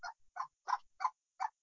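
A chicken clucks five times in short, evenly spaced, fairly clear bursts, with brief silences between each cluck and no talking.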